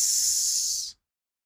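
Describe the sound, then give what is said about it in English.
A person makes a single steady hissing sound, like a snake, airy and bright, lasting just under a second before cutting off into silence. No one speaks. “And he gets cut off by this noise coming from in front of you, a hissing, someone going, hiss.”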